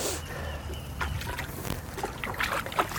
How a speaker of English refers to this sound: Oh, it's hot, so hot. Which is a good sign. Do you want any more? No. Nah, that's good. So we've just dropped water into the hole. Did it cover it? Yep, that covers it.